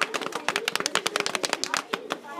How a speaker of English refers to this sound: Drum roll, please.